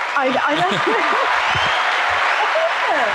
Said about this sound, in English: Where's the applause?